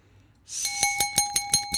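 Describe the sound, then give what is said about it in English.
A voice imitates a ringing school bell: a steady, bright metallic tone over a hissy buzz, pulsing rapidly about seven times for just over a second, with no talking. “That's my impression of a bell.”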